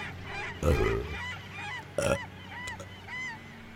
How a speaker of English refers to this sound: I'm so tired of these seagulls.